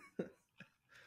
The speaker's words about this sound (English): I just got gunk in my throat, dude. I don't know what's happening. I just got to keep clearing my throat.